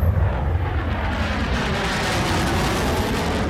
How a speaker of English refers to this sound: Is that like F-111? Here comes one now!